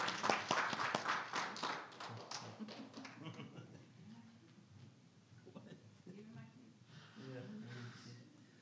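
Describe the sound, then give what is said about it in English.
A crowd breaks into loud, rapid hand clapping for the Lord at a one-year anniversary gathering, fading over a few seconds, followed by a person speaking with some lingering murmur. “Can we give the Lord a hand clap, man?”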